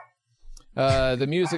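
A single loud bark from Bentley, the speaker's dog, that stretches into a drawn-out, wavering vocal note, following a moment of near silence and a faint rustle.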